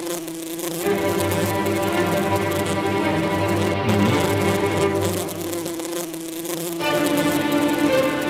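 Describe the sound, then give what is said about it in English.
Instrumental music imitates a swarm of buzzing bees with a dense, rapid, continuous drone that stays loud throughout. A low humming layer sits underneath for most of the passage, and no one speaks. “He wrote a lot of music that were supposed to simulate bees. Like, check out this bee.”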